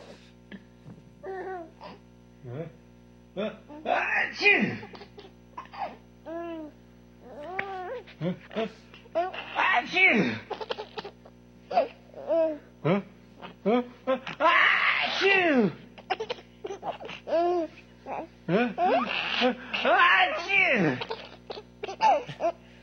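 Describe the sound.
A father repeatedly makes loud, exaggerated fake sneezes about every five seconds, while his 5-month-old baby son giggles and babbles in between each one; played as a video clip.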